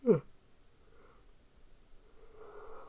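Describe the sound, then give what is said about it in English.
A person yawns: a short sharp intake with a falling pitch, then a drawn-out breathy, voiced exhale rising toward the end. No one speaks. “Keep yawning.”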